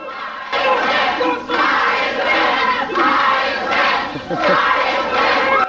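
A large wrestling crowd chants loudly in steady rhythmic waves during a tag-team match involving Stan Lane and Dream Machine, the roar swelling and dipping every second or so with no single voice standing out.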